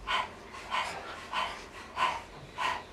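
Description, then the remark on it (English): A person pants like a dog with the tongue out as a breathing exercise, five breathy huffs in a steady, fairly quick rhythm, focusing on the exhale, moderately loud, with no talking. “If you have not done that before, stick your tongue out of your mouth. Begin to pant like a dog, focusing on the exhale.”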